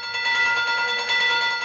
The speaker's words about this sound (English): Train bell.